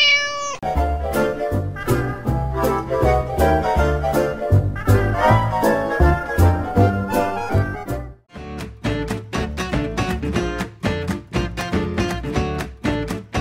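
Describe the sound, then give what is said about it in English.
A cat meows over a loud, busy musical jingle with a steady driving beat that runs continuously, pausing briefly before picking up again with sharp rhythmic hits. “So here, to those unknown strangers, is the cat's meow.”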